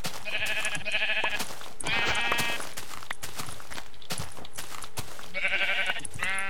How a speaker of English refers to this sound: I hate you, sheep.